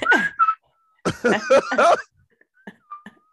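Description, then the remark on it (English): Someone whistles a quick, chirpy little tune in a few bright bursts, trailing off into softer, thinner whistled notes at the end, with no talking. “Just happy as fuck, whistling Dixon, talking to all strangers and shit at the golf course.”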